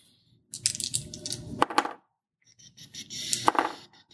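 Two bursts of many dice clattering and tumbling together, each a dense rattle of sharp clicks lasting over a second, with a short pause between them.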